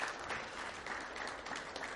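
An audience applauds, a dense, steady wash of many hands clapping at an even level throughout, with no voices standing out above it.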